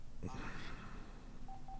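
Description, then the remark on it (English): A quick run of touch-tone telephone beeps sounds near the end, short evenly spaced keypad tones dialing a caller onto the line, following a brief burst of background voices and room noise. “So in the midst of all the renovations that they've got here, I'm not sure if the phone's even going to connect because all the receivers have been moved, but we'll do the best we can.”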